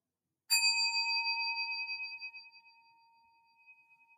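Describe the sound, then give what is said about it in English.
A single strike of a meditation bell during a sitting meditation session, clear and bright, its shimmering tone ringing on and slowly fading over several seconds in otherwise quiet surroundings. “And so please, feel free to pause and continue sitting, and I'm going to ring the bell and do a short talk.”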